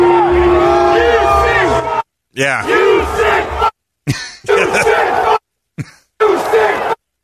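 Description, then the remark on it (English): A stadium crowd in Jacksonville chants loudly at a preseason football game, a dense roar of many voices broken by several abrupt gaps of silence, with one voice briefly speaking over it. “It was so loud that while you're watching, like, oh my God, this is a preseason game.”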